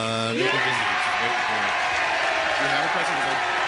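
crowd applauding and cheering

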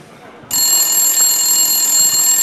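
landline telephone ringing

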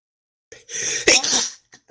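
sneeze

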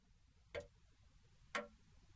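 clock ticking

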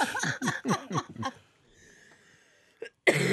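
coughing

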